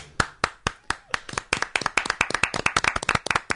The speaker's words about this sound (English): The Alice 973 Instagram getting a well-deserved round of applause this morning.